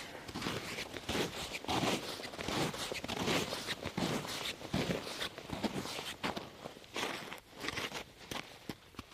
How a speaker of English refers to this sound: Crunch of ice crystals. And one of the things that amazes me is how much it just changes from one footstep to the next.